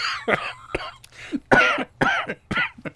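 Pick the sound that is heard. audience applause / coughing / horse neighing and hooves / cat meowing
coughing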